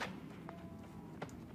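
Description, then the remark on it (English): Two dull, woody chopping thuds land about three quarters of a second apart over a steady low hum: players chopping down trees in a video game, heard outside the town of Windsward. The hits are soft and no one speaks. “I can hear people knocking trees down from over here.”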